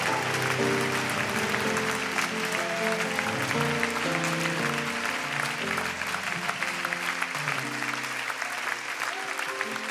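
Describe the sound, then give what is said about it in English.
A large crowd at a camp claps steadily and loudly for the work crew for the full stretch, a dense wash of many hands, with sustained musical tones underneath. “Oh, give them a big old hand clap, friends.”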